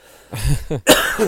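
A person coughs a few times in quick succession, fairly loud, with harsh throaty bursts and brief pauses between them.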